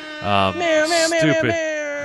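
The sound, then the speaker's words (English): A human voice mimics a cat's meow with a few whiny, wavering tones that rise and fall over about two seconds, fairly loud and nasal, with no other talk. “Did you just meow it?”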